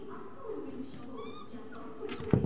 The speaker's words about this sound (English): We opened it and discovered a black and white puppy squeaking at us.